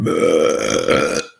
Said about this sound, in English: That was a burp. It came from somebody here.